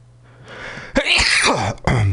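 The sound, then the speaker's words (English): A loud sneeze bursts out after a brief rising intake of breath, followed by a short trailing exhale. No one speaks. “Bless you.”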